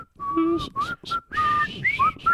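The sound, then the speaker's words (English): A clear whistled melody from a film score, several sustained, sliding notes with brief gaps between phrases, fairly loud, with no talking over it. “The score, I can still, there's that song, the whistling sound, the...”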